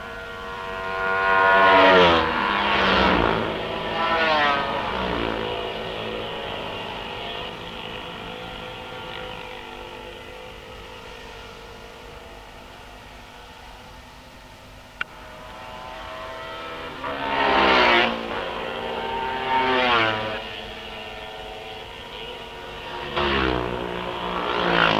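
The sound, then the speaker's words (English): Racing motorcycles roar past a bridge corner in a race, in several loud bursts, their high engine whine rising and falling as each rider goes by, with a quieter lull in the middle and a sharp click partway through. “Now you can listen to the riders as they pass, because you obviously can't hear me.”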